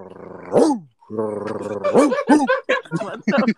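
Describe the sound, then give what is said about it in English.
A person's voice imitates a hound dog, with a long drawn-out baying howl followed by a string of rough, rapid barks, loud. “Nah, mine sounds like a hound.”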